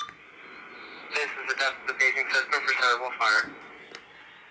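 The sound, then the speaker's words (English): A crackly transmission comes through on one of a husband's seven radios: a burst of garbled, tinny voice chatter over a steady hiss, lasting a couple of seconds before cutting back to static. “Yeah, we can literally be like, he'll have the phone go off, and then he's got the radio,”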